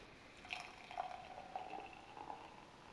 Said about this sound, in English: There we go. It pours a very hazy golden colour with a two-finger foamy white head.